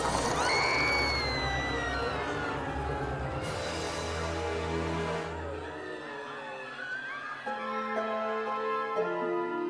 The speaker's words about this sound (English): Not even the countless screams of men, women, and children across Holman were enough to deter his focus.